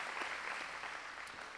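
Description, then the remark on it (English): A crowd applauds steadily at a church service celebrating people getting baptized, the dense patter of many hands clapping at once making a continuous, even wash of sound. “Will you keep your applause going?”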